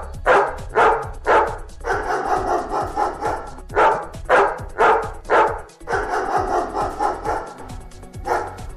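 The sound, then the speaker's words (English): A dog "sings" opera-style as a canine opera singer, alternating clusters of sharp, loud barks with longer wavering howls in a repeating pattern, with no talking. “So will it be the canine opera singer?”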